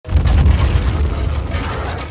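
A heavy, continuous rumbling roar with a booming low end, a cartoon avalanche crashing down in a scene with Homer, set off by the characters' sounds; loud and steady for about two seconds, fading slightly toward the end, with no voices.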